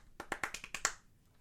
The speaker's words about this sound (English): The tempo. That's the definition the of a lonely clap. Right. No matter how fast the clapping is, it is a lonely clap. Yeah. If there's only this one is a slow clap. This is a fast clap.